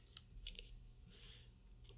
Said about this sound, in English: I heard you typing. I thought you were making you're going to spreadsheet this.